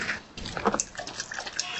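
A dog makes short snuffling and faint whining noises over a steady airy background hum, with no one speaking, on a hot summer day.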